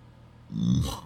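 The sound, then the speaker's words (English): A single low, guttural burp, brought on by drinking Bar Fight Brown beer, rumbles out for about half a second after a quiet moment, then fades into a brief breathy tail. “Boy, this bar fight brown has just really given me the burps.”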